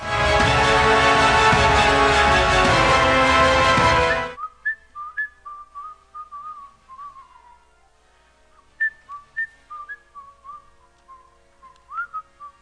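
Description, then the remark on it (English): After a few seconds of loud, dense noise cuts off, a person whistles a slow, wandering tune of short sliding notes, clear, with no talking. “Is my whistling so bad it gets me choked?”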